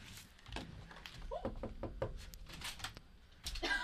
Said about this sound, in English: A knock at the door.